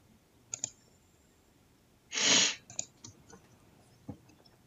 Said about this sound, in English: He sneezes, and we do not sneeze here at Clutching Up Podcast.